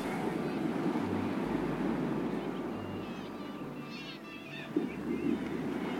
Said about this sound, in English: And one of the things I love is the sound of seagulls.